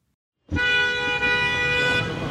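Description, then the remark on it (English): A car horn blares in one long, loud, steady honk in Panama City traffic. It starts abruptly after a brief silence and holds for about two seconds, with low traffic rumble underneath. “Panama City traffic is so bad that everyone plans their meetings for times that are marginally less congested.”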